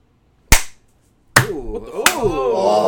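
Three sharp, loud hand claps swatting at a huge house fly, which does not move; the first clap alone in silence, the last two followed by voices murmuring and exclaiming.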